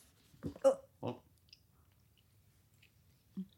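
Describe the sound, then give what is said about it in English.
Chewing on tough teriyaki beef jerky: a few wet, squishy bites in quick succession, a long quiet stretch with faint mouth clicks, then one more soft chew at the end. “chewing and chewing and chewing and tastes chewing. Tastes like tires.”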